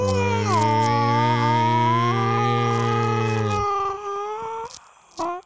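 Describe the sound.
Several voices imitate whale calls together, holding long, wavering moans over a low droning hum; most drop out after a few seconds, leaving one rising call and a brief final whoop.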